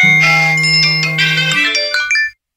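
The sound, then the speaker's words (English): A phone's text message alert chimes as a text from the police arrives at home in a living room in Stanmore at about 3:30 on a Sunday afternoon: a bright electronic melody of quick ringing notes over a steady low tone, loud and clear, lasting about two seconds with no voices. “I got a text at about 3:30 in the afternoon on a Sunday, so I was just sitting at home in the living room, not doing too much, and the text said that it was from the police.”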